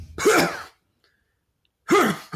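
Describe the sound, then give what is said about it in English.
A voice imitates the harsh, barking cough a person makes 2 or 3 minutes into a running workout: two loud, rough vocal bursts with a rising-then-falling bark, separated by a long silent pause. “Then about 2 or 3 minutes into their workout, they start, the only way to describe it is making this sound that sounds like barking.”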